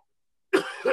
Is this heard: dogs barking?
no